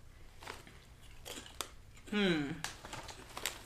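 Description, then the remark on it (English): A quality potato chip being crunched, with several sharp, crisp crackling bursts spread irregularly over a few seconds, and a brief murmuring voice in the middle. “Because this is like a quality chip. Do you see how like, it is? Yeah. It has chew. It has bite. The bitch has crunch.”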